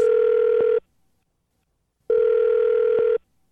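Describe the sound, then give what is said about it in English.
A telephone rings on the line for a radio prank call (Phone Tap on Moving 92.5): two long, steady electronic buzzing tones separated by a pause of just over a second, loud and even, with no voices. “It's another phone tap.”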